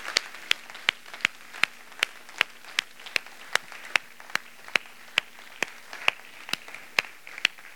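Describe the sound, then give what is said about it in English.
A church audience claps together to applaud the Lord after praying the Lord's Prayer, in a steady, even rhythm, about twenty sharp claps roughly twice per second, consistent in loudness, with no voices. “Let's applaud the Lord, shall we?”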